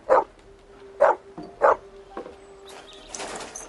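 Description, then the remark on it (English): A dog barks three times in a steady rhythm, loud, followed by a softer yelp and some rustling noise at the end. “Will you please stop barking?”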